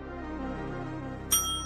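A single bright bell ding rings out near the end, its clear metallic tone lingering over a steady low musical hum that runs throughout.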